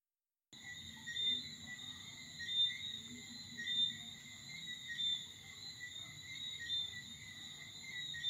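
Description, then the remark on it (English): A dense chorus of tree frogs trills steadily at night after a brief silent start, a continuous high-pitched shimmer over a soft, low rumble with no voices. “A chorus of tree frogs trilled in the damp velvet darkness, wide awake and relentless as they spoke their authority over the nocturnal world.”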